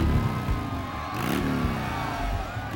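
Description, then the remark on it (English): Motorcycle engines rev and roar continuously as bikers race each other down the main street of Porterville, with one bike sweeping past midway in a rising then falling whine, loud and without any talking. “Motorcycles were racing each other down the street.”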